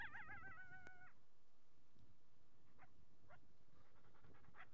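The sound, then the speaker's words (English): A coyote about 60 yards away calls to a dog with a short, wavering, high-pitched howl, followed by a few faint, scattered yips against a quiet outdoor background behind a home at lunchtime. “That's a coyote. He's about 60 yards away from us, and he's calling my dog to come play.”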